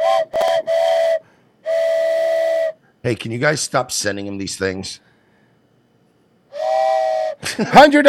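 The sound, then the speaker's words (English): A steam train whistle sound plays as a hype train alert. It blows in several sustained, bright, loud blasts, with a man's voice breaking in between the bursts before the whistle returns at the end. “Whoa, hype train. Hype okay. train.”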